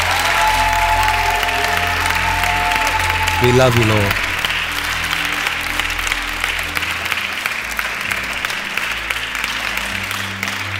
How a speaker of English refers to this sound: Please help me celebrate the Lord. If you're doing it to the Lord, you can do better. Give Him the best hand clap of praise.